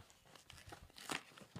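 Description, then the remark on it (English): Crinkling plastic packaging as a box of cinnamon basketball cereal is opened, a run of irregular rustles and tears building to a louder crackling burst near the end, with no talking. “I feel like an unboxing.”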